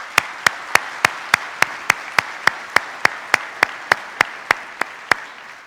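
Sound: audience applause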